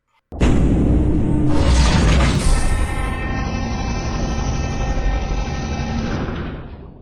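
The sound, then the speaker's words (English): A heavy mechanical door grinds open with a sudden loud start, then a steady rumbling roar with a droning motor whine that holds for several seconds before cutting off. “And now we could distinctly hear the sound of a mechanized door opening.”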